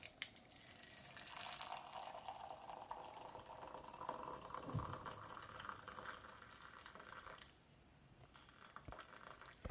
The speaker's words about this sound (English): Okay, here is the Hosong berry. Pour in water.